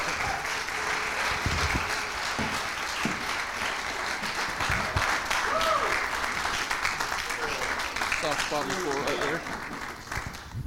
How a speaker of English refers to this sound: Well, keep clapping. My God. Go ahead. Keep clapping. That's not enough. Keep going.